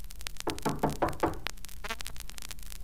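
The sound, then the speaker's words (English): A series of about four firm knocks on a wooden house door in a village, evenly spaced, followed by a few quieter taps. There is no talking. “Here, I'll knock on this door.”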